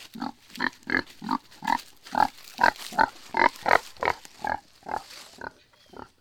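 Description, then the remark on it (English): Piglets grunt and oink in a rapid, steady series of short snorting calls, about a dozen in quick succession, with no talking. “But then, you know, I joke, but I'm not joking, that all of my piglets come with tech support.”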